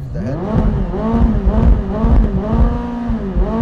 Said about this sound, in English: we'll just put it into sport mode for a quick second just so you guys can hear the engine. Should give you a little rev in neutral.